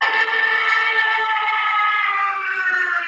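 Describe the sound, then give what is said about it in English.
A Stuka dive-bomber siren wails in a loud, sustained, harmonically rich howl that holds steady for about three seconds, its pitch sagging only slightly, with no one talking over it. “So you got rid of your Hooter and replaced it with a Stuka.”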